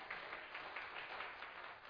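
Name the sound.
audience clapping hands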